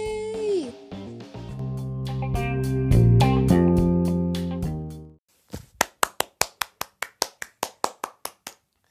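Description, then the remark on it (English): A short burst of music fades out, then a pair of hands claps about fourteen times in a steady, sharp rhythm, each clap crisp and loud with brief gaps between. “Enough clapping. Stop hands.”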